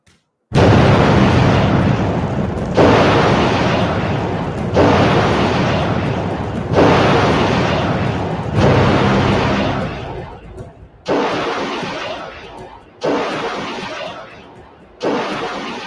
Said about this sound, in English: So we've all seen the Patriot missile systems. This is what it looks like coming out of a shipping container.